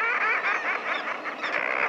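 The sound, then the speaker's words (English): A dense chorus of harsh, overlapping seabird calls from a nesting colony of common murres standing on narrow ledges high on a steep sea cliff on the Pacific Coast, loud and continuous, with many raucous growling voices blending together and no pauses. “The voices belong to birds, to a nesting colony of common murres, standing on narrow ledges high on the steep face of a sea cliff.”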